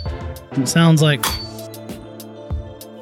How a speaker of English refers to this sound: It sounds like rapid little footsteps of metallic feet smashing into the concrete.